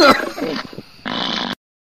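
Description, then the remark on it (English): A single loud donkey bray: a harsh, strained honk that drops off, then a rasping, breathy haw, ending abruptly and followed by silence. “Is that a donkey? Yeah, it was.”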